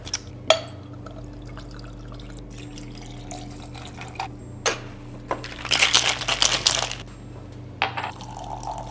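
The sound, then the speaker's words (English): Ice clinks and glassware knocks sharply as a highball drink is mixed, then liquid pours steadily for about a second and a half, followed by a few more clinks, with no talking. “This is called a highball.”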